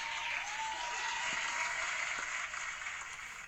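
An audience applauds in a dense, steady wash of many hands clapping, holding an even level before easing off slightly at the very end. No one speaks.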